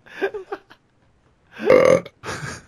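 A loud, drawn-out burp rumbles for about half a second, preceded by a few short throaty vocal bursts and followed by another brief noisy vocal sound.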